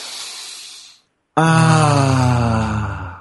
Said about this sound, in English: So we'll take a breath to clear our mind first.